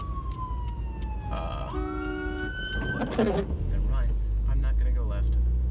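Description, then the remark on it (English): An ambulance siren wails in sweeping, rising and falling tones over the low rumble of a moving car, with a brief harsher burst partway through and engine noise swelling toward the end. “Someone honked at me? Or was it the ambulance?”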